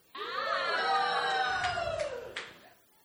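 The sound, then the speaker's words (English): An audience yells in one loud, drawn-out cheer that holds for about two seconds, its pitch sliding slightly downward before fading quickly away. “Did you believe what you just yelled for?”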